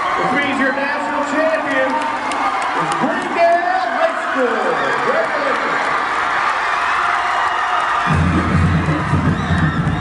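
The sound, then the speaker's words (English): A large crowd of students cheers and shouts continuously in the hallways of Greendale High School during the March of Champions walkthrough, with the drumline leading the team around; the roar stays loud throughout, with a deeper rumble joining in near the end. “You had the drumline leading the team around, and everybody in the school gathered in the hallways, and they marched the students around”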